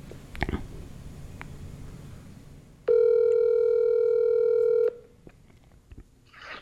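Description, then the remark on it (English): An unplanned phone call being placed on speakerphone: one loud, steady electronic ringing tone holds for about two seconds, with soft clicks and low background hiss before and after. “Let's see if we can get him on the horn.”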